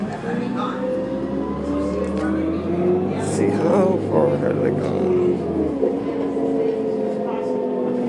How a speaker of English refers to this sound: So I stopped at the bus station, bought a day pass to ride the buses, and a few minutes later the bus came. So now I'm on a bus.